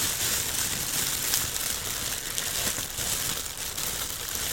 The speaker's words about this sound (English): Now, this, I have here, and I'm glad that you brought this up, I have here a plastic bag. Uh-huh. Okay, now, from Uber Eats. Now listen to that.